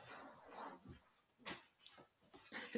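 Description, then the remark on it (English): A dog sniffs in quick, breathy bursts, with faint jingling of a collar tag between them. The sounds come in short, irregular puffs against a quiet background, with no one talking. “Can hear, is that a doggy that you have there?”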